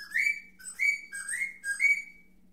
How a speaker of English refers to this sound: I'll get to some more animals. Another bird whistle.